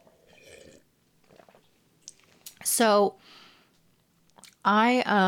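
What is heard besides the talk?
sipping a drink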